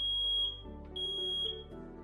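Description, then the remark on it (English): A smoke alarm sounds a shrill, piercing high-pitched tone that holds steady for two seconds with slight pulsing swells, over a low, shifting hum in the background. “Have working smoke alarms. Check them often to make sure that they work.”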